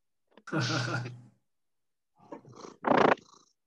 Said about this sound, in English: I heard that. That cat's adorable. Yeah, you're really desperate for attention right now.